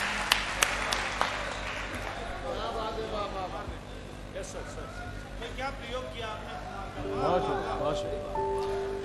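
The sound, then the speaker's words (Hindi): A crowd applauds, the clapping loud and steady over the first few seconds, then fading as voices and murmured talk take over, with applause lingering underneath. “तालियां हो जाए।”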